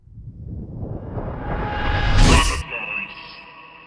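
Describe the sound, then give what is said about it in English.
A swelling sound-effect sting builds over a few seconds to a bright burst, then trails off with a ringing, echoing tail. No one speaks. “We'll put some music in there somewhere. Echo it. Oh my God, echo my voice.”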